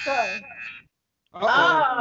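A harsh electronic buzzer sounds in two loud bursts separated by a brief silence, the first holding a steady pitch and the second wavering slightly.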